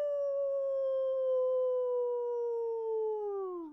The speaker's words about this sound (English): You listen and listen. You hear the faint call of a wolf. Some sort of dog. It sounds like a dog.